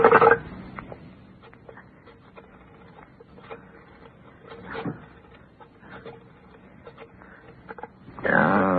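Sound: telephone being dialed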